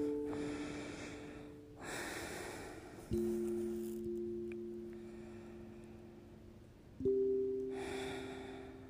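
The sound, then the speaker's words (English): Several slow, deep breaths drawn in and released at a relaxed pace during a guided breathing exercise, fairly loud, over steady low sustained tones that swell in twice. No talking. “All right, let's continue breathing.”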